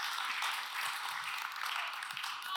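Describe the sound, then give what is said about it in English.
Light, polite golf clap from an audience during a fundraising presentation, a soft steady patter of many hands clapping for a few seconds, subdued, with no talking. “You know, there's golf clap.”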